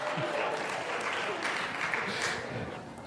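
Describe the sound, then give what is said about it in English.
A crowd applauds steadily for about three seconds, a dense wash of many hands clapping at an even level with a few voices mixed faintly underneath. “I'm not looking for the clap right now. Come on now. But you can if you want.”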